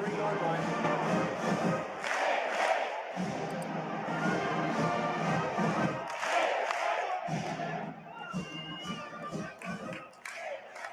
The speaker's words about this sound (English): the University of Florida is ending its gator bait cheer at football games and other sports events because of its racial connotations. The school's president just announced, and I have a little sample of it here, just so everyone's familiar.